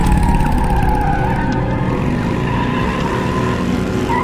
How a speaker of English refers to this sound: Gordon takes a motorbike and chases their car through the streets.